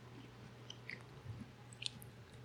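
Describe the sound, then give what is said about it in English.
Chewing of a soft, sticky cotton candy flavored candy with blue and pink sides: quiet, irregular wet smacks and small clicks over a low steady hum, with no talking. “I think the sugariness of the cotton candy starts to come out after you chew a little more.”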